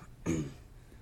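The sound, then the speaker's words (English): A single short, rough throat clearing, a low guttural rasp lasting about a quarter second, then fading into quiet background hiss, from someone clearing their throat because of allergies. “sorry if you can hear me, like, clearing my throat here.”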